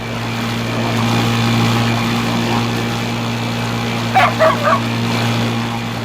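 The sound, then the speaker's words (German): A motorboat engine drones steadily with a low, throbbing hum and rushing noise throughout as the boat casts off and speeds out onto the water, while a few quick, sharp dog yips break in near the end. “als das Boot auch schon ablegte und mit aufheulendem Motor aufs Wasser hinausschoss.”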